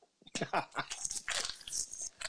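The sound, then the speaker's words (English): Wet chewing of gum, with rapid, irregular smacking and squelching mouth noises continuing for a couple of seconds, loud. “I'm having some chewing gum. Is that okay?”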